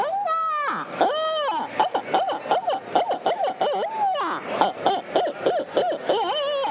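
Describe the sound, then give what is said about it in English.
An affordable handheld hunting owl call is blown: a few long, rising-and-falling hoots, then a rapid choppy run of short hoots, ending in another drawn-out wavering call. Loud and clear, with no talking. “Here's an owl call. Very affordable call, okay? Check it out.”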